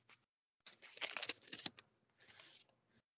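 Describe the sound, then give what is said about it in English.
Paper crackles and rips in a few quick bursts as an envelope is torn open by hand, with a short rustle before it and a softer tearing pass at the end. “We'll crack into this envelope.”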